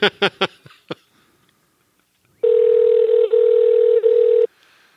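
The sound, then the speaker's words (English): A few quick key beeps on a telephone keypad as a phone number is dialed, then a pause and a steady, loud phone tone holding for about two seconds before cutting off. No one speaks. “I wonder if you can, like, tell what numbers I'm dialing based on the way the tone goes.”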